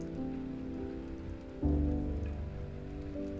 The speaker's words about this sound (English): let the gentle rain wash them away.